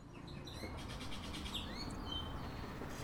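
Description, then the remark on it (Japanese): Several sparrows chirp and tweet in quick, overlapping bursts, with high rising calls, over a steady low outdoor rumble; no one speaks. “スズメたちのおしゃべり。”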